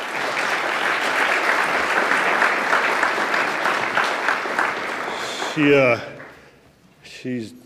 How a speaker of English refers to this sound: if we give her a round of applause.